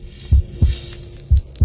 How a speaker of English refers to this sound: The heartbeat.